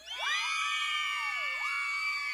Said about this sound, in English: I'm going to get the applause ready. Actually, I should have the girls screaming.